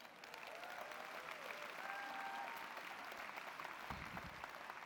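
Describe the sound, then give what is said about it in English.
An audience applauds steadily for about five seconds, a dense, even wash of many hands clapping, with a few faint whistles or whoops rising briefly above the noise, clapping for the company having been featured in Forbes magazine. “You can really clap that we were featured in Forbes magazine.”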